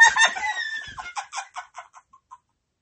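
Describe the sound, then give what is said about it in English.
A chicken squawks loudly, then trails off into a quick series of short clucks that get softer and end in a couple of faint final notes. “Chicken?”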